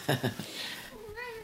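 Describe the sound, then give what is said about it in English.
A short cat meow, a single drawn-out tonal cry near the end, preceded by a couple of brief soft sounds. “Cats.”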